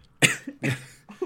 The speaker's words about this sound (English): I did not mean to cough.